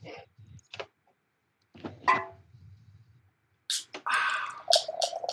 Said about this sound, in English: Ooh, listen to that sound. Listen to that pour. That was good audio.